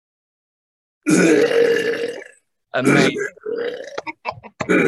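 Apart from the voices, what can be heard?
burping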